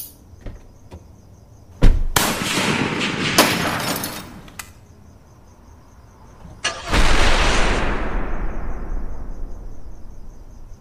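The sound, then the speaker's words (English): Loud bursts of gunfire given as cover fire, in two long volleys: the first is a harsh, crackling stretch of a few seconds with sharp cracks, and the second erupts heavily and slowly fades away. Nobody speaks. “I'll provide cover fire.”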